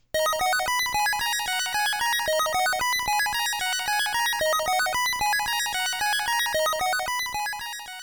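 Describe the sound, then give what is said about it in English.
A short chiptune video game map jingle that plays when approaching the next level: a bright, buzzy melody of quick stepping notes with an echo effect, looping a brief phrase several times at a steady, fairly loud level, with no talking. “It's just a short little jingle, but there's a little map tune where whenever you're approaching the next level, it plays this little tune here.”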